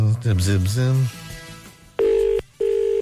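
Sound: telephone ringing tone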